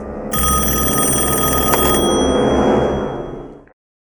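A loud telephone bell rings in one continuous metallic burst lasting about three seconds, then cuts off abruptly into silence. No voices are heard.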